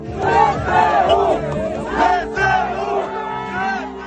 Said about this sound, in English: Over the weekend, scenes of jubilation played out in Kherson, where crowds of local residents greeted Ukrainian soldiers and waved Ukrainian flags, welcoming them along on the main street.